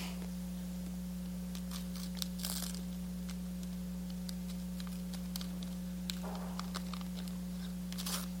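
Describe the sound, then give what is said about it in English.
Paper being ripped open on a gift in short, scattered tears and crinkles, a few brief rips standing out, all fairly soft over a steady low electrical hum, with no voices. “Okay, rip that paper open.”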